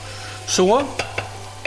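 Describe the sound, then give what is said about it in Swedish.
Garlic sizzles in plenty of olive oil in a pan as it fries until soft, a steady crackling hiss with a brief rising squeak early on and a few sharp utensil clicks against the pan. “Och framförallt så ska vitlöken börja tillagas.”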